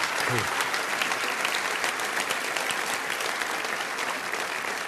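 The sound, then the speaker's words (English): Sustained audience applause for a speaker being introduced, a dense, steady wash of many hands clapping at an even loudness throughout, with no pauses and no voices standing out. “So would you give him a very, very big round of applause.”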